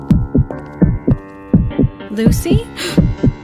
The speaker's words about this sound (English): Ugh, the heartbeat. It's back.